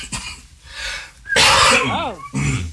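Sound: cough and throat clearing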